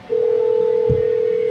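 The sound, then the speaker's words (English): A steady, unbroken telephone tone comes in after a brief pause and holds loud, with a faint low thump partway through and no voices, as a phone call is placed. “All right, so, we're going to crack another beer here and keep on rolling, but I'm also going to make a phone call.”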